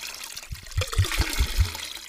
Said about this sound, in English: Listeners, what did he just pour on it? Water. And will this make it harder to start a fire? Yes. Yes.